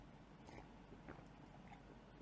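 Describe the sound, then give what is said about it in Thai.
Someone takes a quiet sip of a drink, with faint, soft mouth and swallowing sounds and no talking. “อ้าวก่อนไปเริ่มข่าวแรกขอจิบ1ที”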